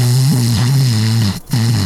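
Loud, buzzy snoring in two long droning breaths, low-pitched and rumbling, with a brief pause between them and no talking.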